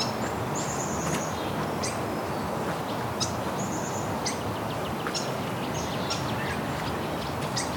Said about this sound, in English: Okay, I'm seeing actually dozens of swallows here. Sounds like barn swallows. Looks like there's tree swallows in there too.